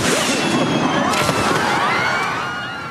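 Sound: fireworks exploding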